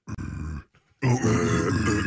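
A person growls in two rough, gravelly bursts separated by a brief near-silent gap, the second burst louder and sustained, with buzzing low tones and harsh noise throughout.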